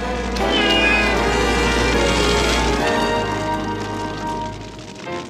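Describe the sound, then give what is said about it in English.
A cat meows in long, drawn-out yowls, loud, over a steady low rumble and a hiss like falling rain. “My cat! Never fear, ma'am. I'll save your cat.”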